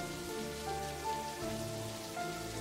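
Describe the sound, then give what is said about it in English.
Steady rain patters down on a hard surface, a dense, continuous hiss of drops that holds an even loudness throughout, with no voices. “It's been a rough few days, so I'm just in the rain.”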